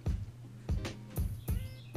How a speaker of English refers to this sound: Oh, you hear the birds? Oh, come through.